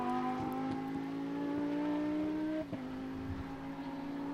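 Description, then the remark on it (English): A race car engine rumbles steadily with strong harmonic tones as the car goes into turn 1, pitch holding then dropping slightly as it comes well off the throttle into the first corner; loud, no voices. “Good sound, whoever was just going into turn 1, even though they were well off the throttle going into that first corner.”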